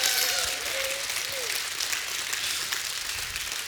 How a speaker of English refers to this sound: Give him a hand clap of praise if he's provided for you and your family.